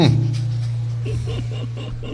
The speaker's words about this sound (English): Give me the breathing in the background. You guys hear it? There you go. You can hear it?